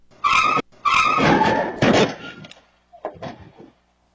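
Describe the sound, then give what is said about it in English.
Two loud, sharp bursts of a car skidding with high screeching tones, followed by a rougher scraping surge and fainter engine noise trailing off. No one speaks. “Is the car trying to take off?”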